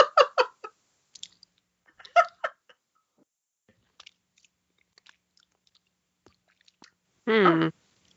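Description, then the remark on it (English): Chewing of food containing pieces of corn, with small crunchy bits, quick bursts of crunches at the start and again after a pause, then scattered soft clicks, ending with a short hummed voice. “Is every once in a while you get a piece of corn. Mm-hmm. And you have to chew.”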